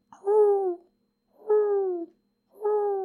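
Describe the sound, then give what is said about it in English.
An owl hoots three times in a steady rhythm, each call a clear, moderately loud tone of about half a second that slides slightly downward in pitch, with short silences between. “Where'd that owl come from?”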